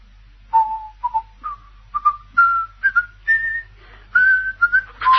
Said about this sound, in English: Heard him? Yes, he was whistling. Sky Boat Song. Catchy tune, isn't it? Favorite of yours. You were whistling it just after you gave me a lift.